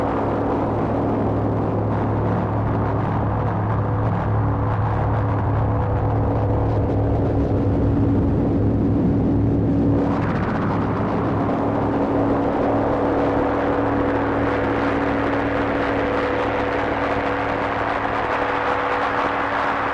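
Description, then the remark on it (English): A dense, continuous drone from a Polygamist synthesizer, with steady low sub-oscillator tones whose pitches are being adjusted, modulation added through VCAs, and a gritty, buzzing texture. Around the midpoint its upper layer dips, then swells brighter, with no voices. “Messing a little bit with the sub oscillator pitches, so now we're getting a little bit more interesting stuff happening with the modulation that I have added in with the VCAs.”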